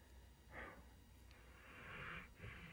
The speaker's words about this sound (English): You hear the dog breathing. It's snoring.